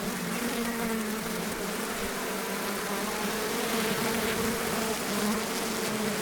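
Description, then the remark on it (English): A dense, continuous drone of a bee swarm pouring out of its hive in a hollow tree, many wings humming together at a steady, loud level with a wavering low buzz that persists throughout, with no voices. “And for a brief moment, time stops, and you're in flight, watching a storm of insects pour out of their hive.”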